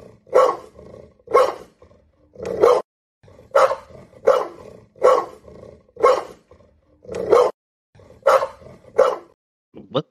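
A recorded dog barking sound effect plays loudly and steadily, about ten deep, gruff barks in a regular rhythm with short pauses between them, clear with no talking over it.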